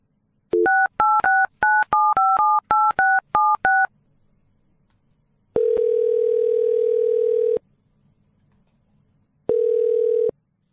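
A quick run of about a dozen touch-tone keypad beeps as a phone call is dialed, then a steady telephone tone sounds twice with a pause between, clear with no one speaking.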